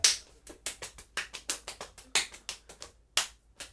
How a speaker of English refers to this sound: I'm playing my belly, you can't see it, but I'm doing it!